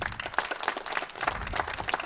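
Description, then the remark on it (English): An audience at Story Night (the Late Night Stories show) claps steadily for a couple of seconds for first-time attendees, a dense patter of many hands at moderate volume with no one speaking over it. “Clap if it is your first time to Story Night.”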